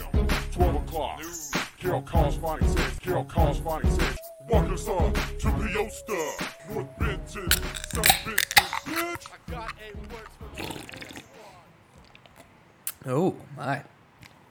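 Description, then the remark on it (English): A couple of beer cans crack open with sharp metallic clicks and a brief fizzing hiss, following a stretch of people talking and a short exclamation. “Ladies and gentlemen, is the sound of a couple crisp beers being cracked.”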